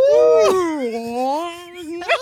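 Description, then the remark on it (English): A voice imitates whale speech, as in Finding Nemo, in one long, warbling, drawn-out moan that slowly dips and rises in pitch, fairly loud, with a brief breathy break near the start and end. “It's like in Finding Nemo, where it's like, I can speak whale.”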